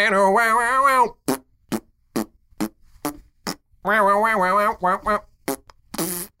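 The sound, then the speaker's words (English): Buzzy, wobbling fart noises from a guitar pedal that turns the guitar's tone into fart noises: two long pitched blurts separated by a rapid string of short, sharp fart pops, loud with no talking. “Kickstarter launched for the fart pedal, a guitar pedal that turns your tone into fart noises.”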